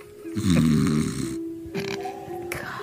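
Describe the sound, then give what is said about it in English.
A sleeping person snores with a rough, rattling breath drawn in, followed by a softer second snore, fairly loud with a steady low hum underneath. “I just can't stand somewhat. His snoring.”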